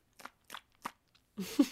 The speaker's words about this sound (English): I have my water. Okay. Oh, me too. I'm going to take a sip. Good to stay hydrated in these dry winter environments.